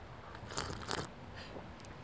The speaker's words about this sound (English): I'm usually not a sipper. I did that for the microphone.